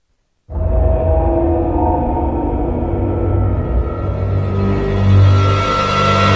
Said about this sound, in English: Eerie drone intro.